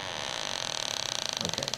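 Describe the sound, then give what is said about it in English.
A shoe closet door creaks open slowly, its hinge groaning in a rapid stuttering series of clicks that spread out and grow louder near the end, with no voices. “Let me get the door.”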